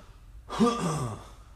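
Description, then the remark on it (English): A single heavy, drawn-out exhale through a stuffy, congested nose, fairly loud, lasting under a second and followed by quiet. “Now I'm breathing all heavy because my nose is fucking stupid.”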